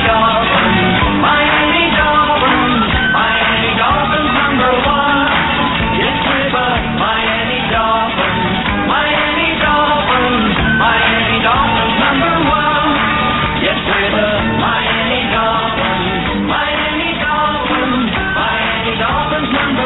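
A football team fight song plays loudly and continuously, with a chorus of voices singing and shouting over a steady, driving brass-band rhythm for the whole stretch.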